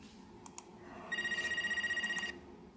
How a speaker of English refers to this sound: Let's get a phone ring sound in here. Hold on.